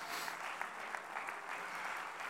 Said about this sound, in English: He's our risen Lord. Oh, clap your hands unto him right now.